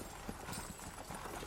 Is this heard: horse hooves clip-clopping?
yes